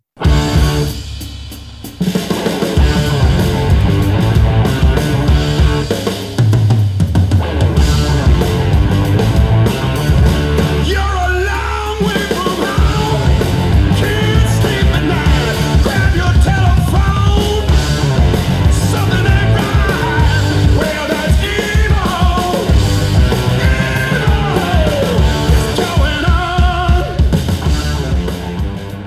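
A blues rock cover song plays loud and steady for the whole stretch, with a gritty, wailing lead vocal bending over a thick, driving band groove.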